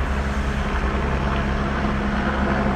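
A private helicopter hovers low overhead, its engine producing a steady, loud, low droning rumble with a broad wash of noise that holds constant throughout, with no voices present.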